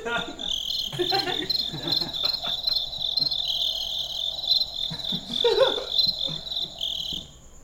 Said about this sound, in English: hang on, I gotta shut down these crickets. What happened to this place?